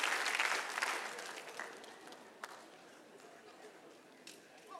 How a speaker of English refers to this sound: If we're all equal, clap your hand.